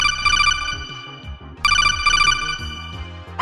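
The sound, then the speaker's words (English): A telephone ringtone signalling an incoming listener call trills loudly in two bright bursts separated by a short pause, with a low melodic backing underneath and no voices. “Let's go to the phones and take a listener call.”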